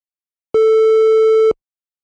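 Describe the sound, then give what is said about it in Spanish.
A single steady sawtooth wave tone from a synthesizer oscillator plays for about one second, bright and buzzy with a rich stack of harmonics, starting and stopping abruptly, loud and isolated with no voices. “La primera se llama dientes de sierra, es la sawtooth wave.”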